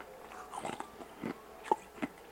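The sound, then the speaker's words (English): Someone crunches ice between their teeth, a run of sharp brittle cracks and grinding bites, with two louder snaps near the end and no talking. “are you going to crunch your ice or say something?”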